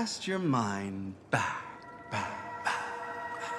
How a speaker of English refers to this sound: What is with the echo? Dramatic effect.